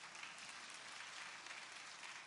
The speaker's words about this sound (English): I want to salute you for coming out in this inclement weather. You ought to give yourself a hand clap for just getting here.